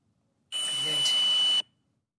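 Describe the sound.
A single sustained electronic beep lasting about a second, a steady high-pitched tone over a wash of static-like noise with a muffled voice mixed in, starting and stopping abruptly, recorded in a private house.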